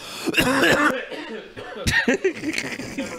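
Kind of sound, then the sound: human body sound, hard coughing fit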